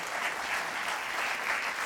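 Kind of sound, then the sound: crowd, church audience applause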